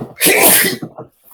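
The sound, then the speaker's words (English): A single loud sneeze bursts out sharply, followed by a brief murmur of breath or voice as it fades. “Bless you.”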